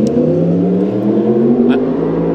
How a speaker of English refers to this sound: Motorbike away.